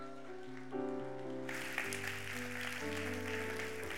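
Audience applause swells in about a third of the way through, a steady wash of clapping layered over loud sustained music chords that continue throughout.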